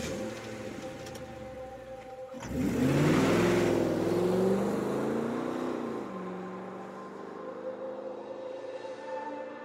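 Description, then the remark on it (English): A hijacked car's engine idles, then roars up loudly as it accelerates hard and speeds off, its pitch climbing before settling into a steady, fading drive away. No voices. “forced Janine into the back seat of her own car before speeding off”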